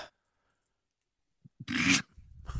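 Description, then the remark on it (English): Heavy, hyperventilating-style breathing: after near silence and a couple of faint clicks, a loud, harsh rush of breath lasting under half a second, followed by rougher, quieter breath noise. “Breathing heavy, hyperventilating at the thought of The Undertaker having one last match.”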